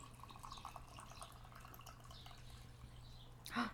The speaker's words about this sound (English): Get this ASMR pour.